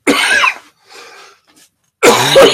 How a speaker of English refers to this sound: I do not know what's wrong with me. Almost coughed out my eyeballs.